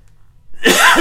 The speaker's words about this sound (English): Excuse my coughing.